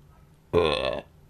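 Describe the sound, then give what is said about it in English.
A single loud, throaty burp lasting about half a second, standing alone against near silence, with a rough, voiced rasp that cuts off abruptly. “Burp, …. Burp,”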